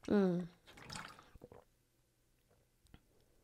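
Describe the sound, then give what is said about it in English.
A brief voiced sound, then a short splash of water being poured and sipped, followed by a few soft wet gulps and clicks, otherwise quiet. “So anyways, let me get some water because I'm a little parched.”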